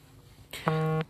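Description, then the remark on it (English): A phone vibrates once with a short, steady electronic buzz lasting under half a second, fairly loud, with no talking; a notification of someone liking a post. “So, if I hear it vibrate, it's probably from you.”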